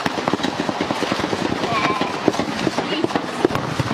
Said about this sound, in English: That's gunfire. Get down. Just stay down and get down.